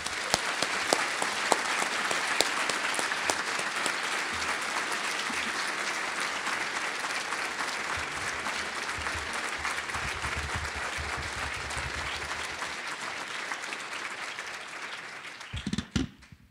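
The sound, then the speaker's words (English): A large audience in a large room applauds steadily to welcome speaker Mr. Clement after his introduction, a dense wash of clapping that holds at an even, fairly loud level for about fifteen seconds before tapering off abruptly. “So thank you for that introduction and for the applause.”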